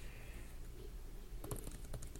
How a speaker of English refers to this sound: Let me take a look at this keyboard. So it feels... It kind of reminds me a little bit of the Mac's new keyboard. Let me try typing.